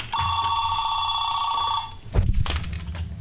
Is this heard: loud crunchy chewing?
no